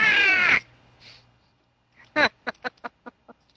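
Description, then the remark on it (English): A loud, harsh, angry squawk rings out, then after a short pause another squawk starts a quick run of sharp, shorter cries that fade away. “An angry squawk noise.”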